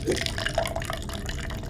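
A liquid glugs and splashes steadily into a glass for a couple of seconds, a continuous bubbly trickle with bright ringing tones over a low rumble.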